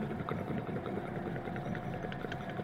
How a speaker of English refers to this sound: About an hour goes by ultimately, and eventually you start to hear the very obvious sounds of an idling machine.